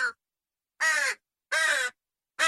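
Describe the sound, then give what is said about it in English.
A crow caws in a steady series of loud, harsh calls, each about half a second long with short pauses between, with no talking over it. “Should we hear the crow?”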